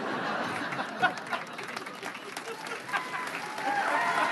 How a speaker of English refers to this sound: Thank y'all. I needed that applause break.